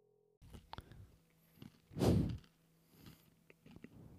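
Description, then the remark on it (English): Close-up chewing with irregular wet clicks and crunches, including one louder, longer crunchy burst midway, all right up against the microphone with no talking. “Can I hear me chewing?”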